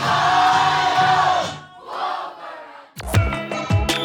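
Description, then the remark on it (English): A large crowd roars and cheers loudly, the noise dipping after a second and a half, then booming drum-like hits and music cut in near the end. “Hands in the air, start clapping everybody, come on. Nice and loud for us.”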